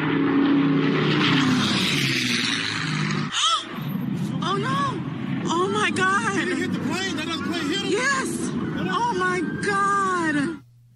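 Loud, droning propeller engines of a B-17 Flying Fortress and a Bell P-63 King Cobra at an air show in Dallas fill the first few seconds, then the sound breaks off abruptly as the two planes collide in midair, and a crowd of spectators cries out and shouts in alarm until the end.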